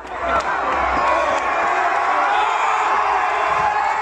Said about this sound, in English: Those cheers you're hearing are from a Black Lives Matter protest in Bristol, England in 2020. People are celebrating the fact that a statue of the slave trader Edward Colson, that once occupied a prominent position at Bristol's port, has been pulled